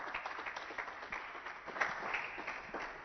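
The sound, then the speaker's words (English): A church audience claps their hands for Jesus, a dense, steady wash of many overlapping claps at moderate loudness with a few sharper spikes, and no voices speaking over it. “Clap your hands for Jesus. Keep clapping your hands.”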